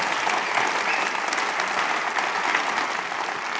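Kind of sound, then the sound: crowd, audience clapping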